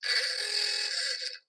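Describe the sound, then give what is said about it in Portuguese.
A single steady horn blast, bright and buzzy, holding at an even loudness for about a second and a half before cutting off sharply, with no voices. “E está aí a buzina.”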